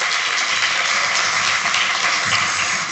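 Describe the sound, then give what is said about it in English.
An audience claps for gratitude, steadily for about three seconds, a dense, even wash of many hands clapping at once with no voices on top. “The practice, yeah, clap for gratitude. I like clapping for gratitude.”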